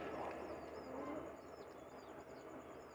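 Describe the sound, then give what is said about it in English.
A bird near a cage calls with a string of short, repeated chirps and sweeping whistles over a steady rumbling background noise, fairly faint, with no one talking. “Yeah, the fucking bird came over.”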